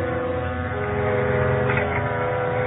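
A loud, steady electric elevator buzzer in a lobby, rung to call the elevator down from upstairs, drones continuously for a few seconds, rich and harsh in tone, with no voices and no break in the sound.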